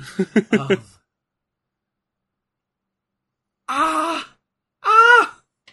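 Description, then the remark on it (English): The wrestler Mankind cries out in pain during a wrestling match: a quick run of short, choppy vocal bursts, a pause of silence, then two loud, drawn-out strained squeals, each lasting under a second. “He squeals when he's in pain.”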